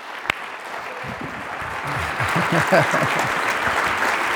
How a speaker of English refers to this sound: And I want you to give the biggest Living Stones round of applause you can